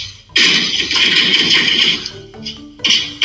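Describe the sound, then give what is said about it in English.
A deer leaps over two cars in a driveway and slams into a parked 2007 truck, breaking its door, with a sudden, loud crash that rattles on for over a second, then a short ringing tone and another harsh burst. “A deer leapt over two cars in his driveway and slammed right into it, breaking the door.”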